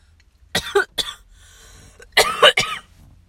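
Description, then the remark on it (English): A harsh coughing fit after smoking from a bong: two quick hacking coughs, a short pause, then a longer, raspier cough with a strained, throaty edge. No speech. “I hate how much I cough, though.”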